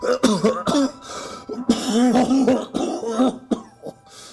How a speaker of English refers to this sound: I haven't been well lately, but these coughing spells don't usually last very long.